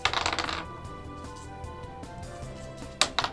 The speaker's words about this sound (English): Thank God you rolled 3 dice. Okay, we'll call that a 12. We'll call that a 20.